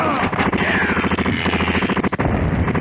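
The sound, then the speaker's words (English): Dense, chaotic video game battle audio: rapid bursts of gunfire and sharp blasts pile up loudly and continuously, with indistinct voices mixed into the din. “Listen to some of this audio. Hold on. It's a lot of explosions.”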